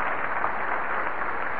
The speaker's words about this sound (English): We've got to have a little more cheering there, please.